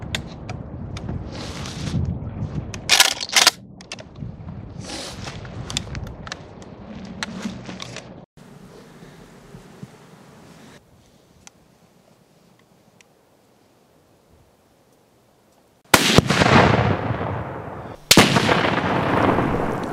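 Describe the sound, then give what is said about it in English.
A 12-gauge shotgun loaded with a special shotgun shell fires two loud, booming blasts a couple of seconds apart as a demonstration, following sharp cracks and rustling movement earlier and a stretch of near silence. “This year, I'm upgrading from a 20-gauge shotgun to a 12-gauge, and I'm using this top-secret special shotgun shell.”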